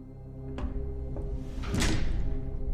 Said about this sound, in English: Meanwhile, while they are doing that, Marmaduke, the doors open up for you.